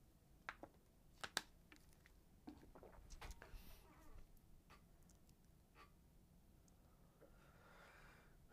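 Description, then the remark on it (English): Someone quietly takes a sip of a drink: a few soft clicks and mouth sounds scattered over several seconds, then a faint airy slurp toward the end, with no talking. “Taking a sip.”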